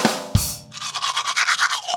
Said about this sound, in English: And the second, after you eat, is brushing the gunk off your teeth.